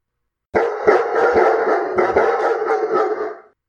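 Several dogs bark loudly, their overlapping, rapid barks forming a continuous noisy chorus for about three seconds before cutting off.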